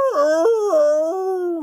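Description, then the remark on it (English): A dog howls, a mournful, wavering wail that rises and dips in three drawn-out swoops before trailing off, with no talking around it. “How dare they elect a wailing dog?”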